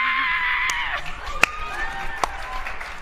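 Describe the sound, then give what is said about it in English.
A person lets out a loud, heavy-metal-style vocal scream that holds for about a second and trails off, followed by a few sharp knocks and scattered clatter. “as you give another metal scream”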